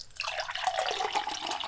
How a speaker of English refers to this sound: and of course your glass of sherry, because we all love a good glass of sherry. Yes, we do. And speaking of sherry, I'm going to go ahead and pour myself a cup.